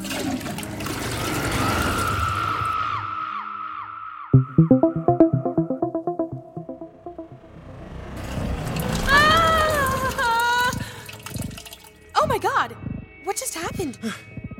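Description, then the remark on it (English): A toilet is flushed to travel back in time to Christmas Eve, 2011. It flushes with a loud, rushing gurgle of water, then gives way to warbling electronic tones and swooping, whistling sound effects that rise and fall over the following seconds. “Oh, I have to tell the toilet where we're going before we flush.”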